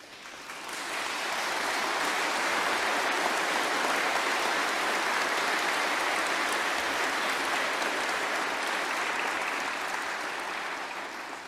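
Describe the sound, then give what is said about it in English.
A crowd applauds steadily for about ten seconds after news that the Supreme Court overturned Roe versus Wade, a dense even wash of many hands clapping that rises quickly at the start and tapers off slightly at the end, with no voices over it. “And yes, it was worth applauding, but everyone that just clapped and everyone who didn't, we have a lot more work to do, and I'm going to get to that.”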